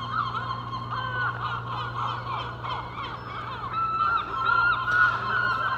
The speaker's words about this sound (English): A couple of young gulls attacking fish corpses in the shallow waters of the harbour as the tide's properly out now.